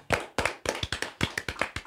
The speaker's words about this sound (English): Please clap with me.